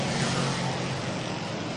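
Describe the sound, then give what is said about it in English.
Race cars roar around an oval track in a 100-lap race, coming around turn four after about 65 laps, a loud, steady wash of engine noise with a low droning rumble underneath, no voices, holding at an even level throughout. “Riley Siebert coming around on a turn number four.”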